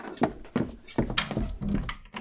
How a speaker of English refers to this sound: There, the front door is locked.